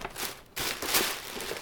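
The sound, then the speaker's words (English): Wrapping paper crinkles and rustles in a quick, continuous burst as an anniversary gift is opened, with a brief pause partway through before the crackling picks up again, louder and busier. “Okay, so I'm going to open it because I'm super excited.”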